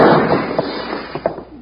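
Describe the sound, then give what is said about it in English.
A burst of gunshots in a shootout that breaks a front window and puts a hole in a dishwashing machine: a loud, rumbling opening blast followed by several sharp, quick cracks at uneven intervals, fading slightly toward the end, with no voices. “Bill, you shot a hole in my dishwashing machine.”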